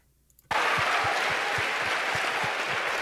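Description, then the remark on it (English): A crowd of supporters bursts into sustained, dense applause after a brief quiet moment, the clapping loud and steady with a faint rhythmic low thump running beneath it. “About the people that are clapping?”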